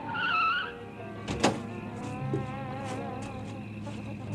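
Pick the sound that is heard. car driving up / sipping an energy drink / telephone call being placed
car driving up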